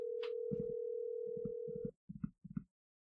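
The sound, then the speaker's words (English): A steady electronic phone ringing tone hums for about two seconds over a few dull low thumps, then cuts off, leaving short muffled bursts. No one answers or speaks. “You know, don't hold it against him that he's not answering the phone.”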